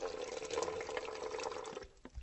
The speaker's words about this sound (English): So Henry's putting a little bit of water into the bottle from the tap.